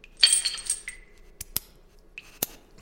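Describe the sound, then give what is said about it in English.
Keys jangle and a lock clicks, followed by a few sharp metallic clanks of chains being pulled loose as someone chained to a wall is unchained, fairly loud, with no voices. “Where are the keys? Here, on this hook. Unchain him.”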